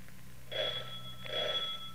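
A doorbell at a house rings twice in short, evenly spaced bursts, each a bright, buzzing metallic tone, over a steady low hum with no voices.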